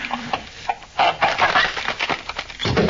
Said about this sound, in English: Right. I'll have this lock off and nothing flat.